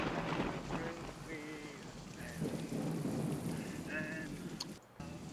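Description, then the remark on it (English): Steady, heavy rain hisses continuously, with a deep rumble underneath and faint voices murmuring in the background. “Rain, hear that shit.”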